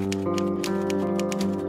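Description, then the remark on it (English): Keys of the typewriter from Dr. Shipman's surgery, which Mrs. Grundy used to borrow, clack in a quick, fairly steady series of sharp taps over a sustained musical tone in the background, with no voices. “Mrs. Grundy used to borrow it from time to time, and that was the typewriter."”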